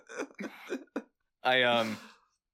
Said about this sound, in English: Hold on. Sorry, I have a bit of a cough today, so I keep muting myself.